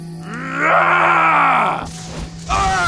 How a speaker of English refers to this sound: The apothecary roars, sending a vicious red energy bolt directly towards Conrad's heart. Conrad screams in agony as his skin melts from his bones, and his skeleton collapses onto the fire between them, soon to be nothing but forgotten ash.